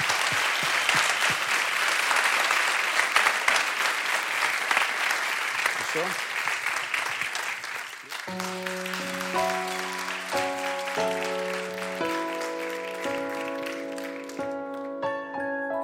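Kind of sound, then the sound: crowd, audience applause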